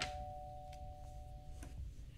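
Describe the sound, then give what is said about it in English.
A doorbell rings with a steady, sustained mid-pitched tone, punctuated by a few soft metallic dings. The sound is faint and no one speaks. “Oh, someone's at the door.”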